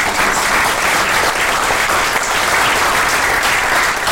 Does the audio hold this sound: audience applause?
yes